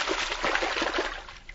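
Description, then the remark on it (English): Water sloshes and splashes steadily for a moment in a flooded passage, a continuous wash of churning liquid with small bursts of splatter, and no voices. “Duck your head under the water and push your way through.”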